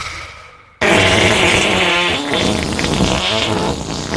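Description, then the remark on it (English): A voice blows a long, loud raspberry imitating a fart, starting abruptly and sputtering continuously for over three seconds with a buzzy, flapping texture. “I can make the most incredible fart sound ever.”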